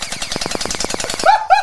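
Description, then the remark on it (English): An Orbeez gel blaster gun fires a rapid burst of about ten sharp, evenly spaced clicks, followed by two brief higher-pitched whirring or squealing tones as the bursts end. “It's an Orbi gun, isn't it?”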